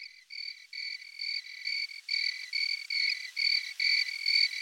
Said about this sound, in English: Is that cricket? Yeah. Cricket I was hearing.